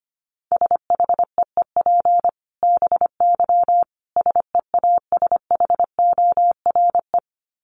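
Fast Morse code at about 25 words per minute: a single steady mid-pitched beep keyed into quick short and long pulses, grouped with brief gaps, with no voices.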